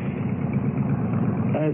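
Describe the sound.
A motorcycle engine idles with a steady, rumbling low chug that holds an even loudness throughout, and a brief voice-like sound surfaces near the end.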